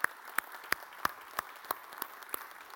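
An audience applauds, a wash of clapping with sharp claps landing in a steady, even rhythm, roughly three per second, moderately loud and with no voices over it.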